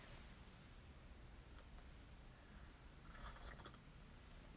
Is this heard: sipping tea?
yes